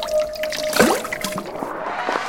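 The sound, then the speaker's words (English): Mop water ripples and trickles in a soft, bubbling swirl, with a brief splashy surge near the start and a faint sustained tone humming underneath; no one speaks. “Look once more into my magical mop water.”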